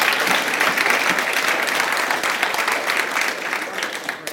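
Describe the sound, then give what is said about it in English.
A church audience applauds steadily as a clap of praise to God, a dense crackle of many hands clapping at once that stays loud and full for the whole stretch, easing only slightly toward the end. “I hear somebody like trying to give a clap up, which I think would be really cool to give a clap of praise to our great God.”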